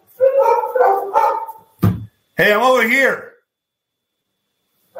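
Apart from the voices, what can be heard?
dogs barking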